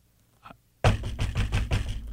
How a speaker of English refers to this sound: Somebody else will be banging on the door.